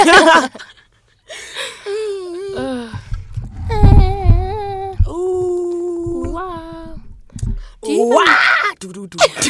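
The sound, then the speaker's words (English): A person screams in a series of loud, drawn-out cries with wavering pitch, ending in a harsh, raspy outburst, with a low rumble underneath. “You just screamed at me and went, ah!”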